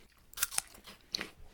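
Crisp crunching as someone bites into a crunchy apple, with three sharp bursts: two quick snaps close together, a short pause, then a juicier crunch, with no talking.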